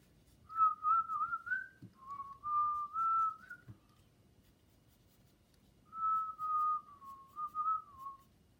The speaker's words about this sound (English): We whistle while we work.